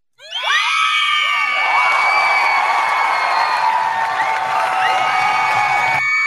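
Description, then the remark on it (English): A crowd cheers and screams loudly for about six seconds, many shrill, high voices overlapping in a dense roar that bursts in suddenly and cuts off just as abruptly. “We can absolutely cheer people off taking care of their business.”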